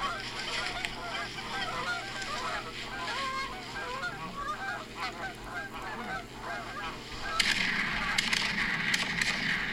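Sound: geese honking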